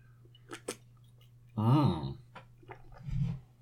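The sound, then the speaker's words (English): Someone drinking water: a couple of small wet clicks, then a louder throaty gulping swallow, followed by a soft low thump, all over a faint steady hum. “Need to wet the whistle real quick.”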